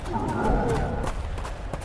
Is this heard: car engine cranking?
no